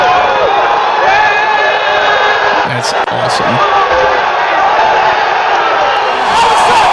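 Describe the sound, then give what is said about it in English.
A big crowd cheers and roars loudly at a disc throw in a sports play, the wall of voices sustained for the whole stretch, while a man speaks briefly over the din. “Watch the crowd. No way! No way!”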